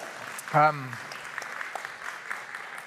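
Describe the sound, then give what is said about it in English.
A crowd claps steadily with a dense, crackling patter of many hands throughout, and a short voiced shout or cheer rises briefly over it near the start. “So let's pray. Oh, clap, okay.”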